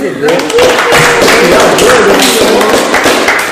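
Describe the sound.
An audience claps for a first-time guest, a burst of loud, steady applause lasting a few seconds, the dense patter of many hands mixed with voices calling out and cheering over it.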